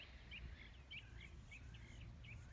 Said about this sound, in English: Wanting to enjoy the bird sounds and living here.